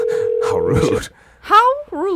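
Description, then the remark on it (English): A single steady ringing tone from an outgoing phone call that goes unanswered sounds for about a second beneath overlapping voices, then cuts off, followed by a short pause and more talking. “On the phone here waiting for this person.”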